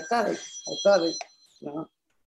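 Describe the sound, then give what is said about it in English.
A mobile phone, set to silent with its red switch, still rings with a short, bright electronic ringtone: a few quick tonal bursts over sustained high-pitched tones, then a pause and one more burst. “It's weird how my phone rang after I put it on silent.”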